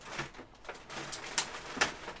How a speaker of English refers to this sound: By the way, do you hear that rustling? I do. It's Evie exploring weird places in my sister's apartment.